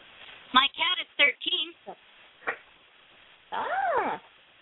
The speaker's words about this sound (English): beautiful cat.